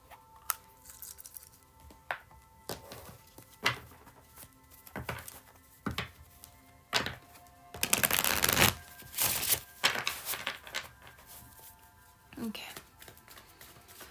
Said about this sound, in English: Let me give the deck just a few shuffles and we can get started.